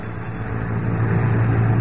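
A heavy London bus engine rumbles steadily in the late afternoon, its low drone rising slightly as the bus pulls along Bayswater Road in London, with no voices present.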